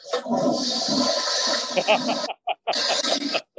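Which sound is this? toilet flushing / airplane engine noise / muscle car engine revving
toilet flushing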